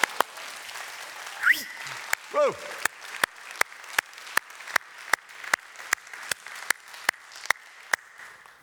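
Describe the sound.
A church audience claps for the Lord together in a steady, even rhythm, sharp loud claps over a bed of crowd noise, after a voice calls out an exclamation.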